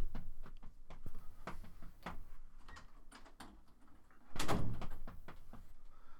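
Repeated sharp knocks on a door, irregular and fairly close, followed by a louder rushing burst like the door being opened before a few more light taps. No one speaks.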